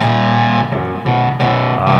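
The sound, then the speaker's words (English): A distorted electric guitar plays sustained, gritty chords with a faint echo from a Strymon Timeline delay pedal trailing behind each strum, loud with no talking. “You get a little echo from maybe one of the... Timeline, cool.”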